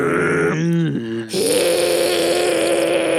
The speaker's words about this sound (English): she's terrified of cats, and the cat's like, I guess, apparently trying to hiss at her, and it's just going, yeah, clearly the sound designer does not know what real cats sound like.